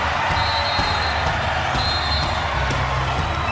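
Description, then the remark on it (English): At match point in a women's volleyball match, BYU wins on a block at the net against Santa Clara: a sharp smack of the ball rising out of a loud, steady roar from a packed arena crowd that fills the whole moment. “Match point for BYU. T. Withers Welling just about got on an ace, and they'll take it on a block.”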